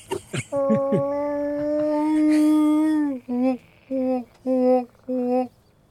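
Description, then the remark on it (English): A recorded female Sasquatch howl call, a Sasquatch response sound file played over a phone speaker: one long, steady mid-pitched howl lasting a few seconds, followed by four short, loud, clipped whoops in a regular rhythm. “I believe that's a female Sasquatch.”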